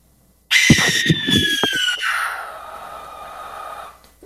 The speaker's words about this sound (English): Now, I said I was going to play the barn owl, B-A-R-N, which I think is one of the fiercest, scariest sounds of all of them. So here's the barn owl.